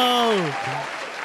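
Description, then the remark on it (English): A steady wash of clapping applause fills the whole moment, dense and fairly loud, with a man's voice speaking over it at the start before the clapping carries on alone. “Come on, give me some applause.”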